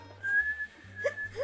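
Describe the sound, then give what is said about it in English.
A small whistle like a candy whistle, with a little cut in it to blow into, holds a thin, steady high-pitched tone for the whole moment, with two short lower chirps near the end. No one speaks. “there was like a little cut taken out of it and you could blow into it and there was a whistle”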